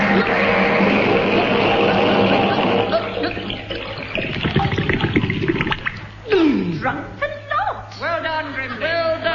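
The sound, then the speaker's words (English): A person swallows and gulps water as it rises over their chin: rushing, sloshing water gives way to wet gurgling gulps mixed with strained, bubbling vocal sounds, fairly loud. “It's over my chin. I'm swallowing water.”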